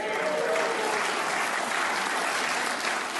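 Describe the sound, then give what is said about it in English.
A church audience clapping steadily and loudly for a young man recognized at the pulpit on graduating as a new sheepdog, a dense wash of applause that holds even from start to finish without pauses or words. “Now I'm going to give you one more chance to actually clap like you love the kid.”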